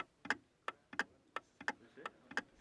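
Six clocks ticking together in a café, sharp clicks arriving in a steady rhythm about three times a second, some ticks doubling or overlapping slightly out of step. No one speaks.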